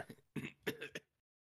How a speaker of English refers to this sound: How are you doing over there? You sneezing?